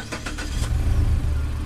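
A car engine cranks over with a few quick rhythmic bursts, then catches and settles into a steady, low rumbling idle. No one speaks.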